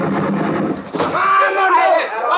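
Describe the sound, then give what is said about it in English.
A rapid burst of Tommy gun fire blasting the bolt off a door crackles for about a second, ending in a sharp crack, then loud voices carry on over a tonal backdrop. “He blasted the bolt off my door with a Tommy gun, and then with a half a dozen of his men, he plunged into the house.”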